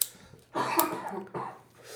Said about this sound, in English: Oh, sorry, coughing attack.